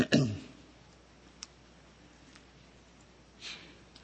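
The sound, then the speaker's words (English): Soft, scattered rustles and light flicks of many Bible pages being turned by an audience looking up Proverbs chapter 6 on page 768, faint and intermittent, following a brief burst of voice at the very start. “I'm waiting as I hear your pages turn.”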